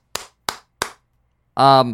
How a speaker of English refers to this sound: I don't know how well this will pick up my claps. I never listen to them. You listen to them. How clappy are my claps? Do they give you the clap?